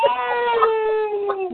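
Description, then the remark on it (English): A man's voice imitates a long, sustained wolf howl, holding a steady wavering tone that slowly slides down in pitch. It is fairly loud, with no other sounds around it. “But a howl, brother.”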